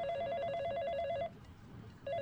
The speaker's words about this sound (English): Who's ringing you